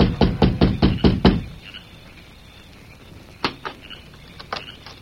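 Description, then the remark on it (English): A quick series of six firm knocks on the wooden door of a small house at dusk, loud, followed by quiet with a few faint scattered thumps and clicks. “It was dusk when he reached the small house and rapped on the door.”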